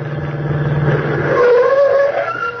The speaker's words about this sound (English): Wait a minute. Oh, here comes another car. A taxi.